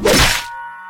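A single heavy, crunching thwack of a large rock brought down onto a head, loud and broad, then quickly giving way to a steady high-pitched ringing tone, like ringing in the ears, that lingers alone.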